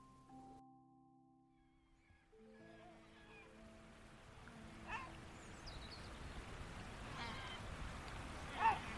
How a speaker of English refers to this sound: So that sound there that you hear, like a bark, that arr, arr, that's a black-backed gull, and a whole load of gulls are flushed because the eagle has just flown through and everything's up in the air at the moment.